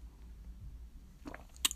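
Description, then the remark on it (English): A quick sip of water: a brief cluster of soft, wet mouth sounds ending in a small sharp click, over a faint low hum, with no talking. “that's just water, by the way.”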